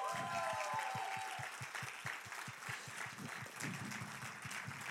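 A crowd applauds steadily for the full five seconds for the volunteers and people working behind the scenes, a dense wash of clapping over a regular low thumping beat, with a short high-pitched tone near the start.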